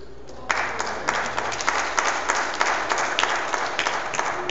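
A crowd bursts into sustained applause, many hands clapping in a dense, steady wash that holds at an even loudness for several seconds with no talking.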